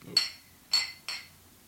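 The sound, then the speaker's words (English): Three bright, ringing clinks of drinks of Rogue Bat Squatch IPA tapped together in a toast, the first two spaced apart and the last following quickly, each with a short shimmering decay. “Well, let's dive right in, and then we'll get talking about it. So, cheers.”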